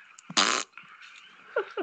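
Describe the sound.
A man makes two fart noises: a loud, buzzy fart noise blasts out for about a quarter second, followed by a couple of shorter, squeaky sputters trailing off.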